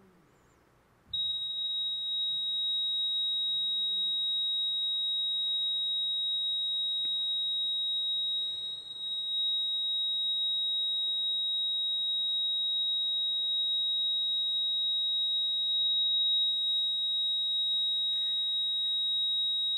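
A heart monitor flatline: one unbroken, high-pitched electronic tone that starts after a second of quiet and holds steady and loud to the end, with no beeps or breaks.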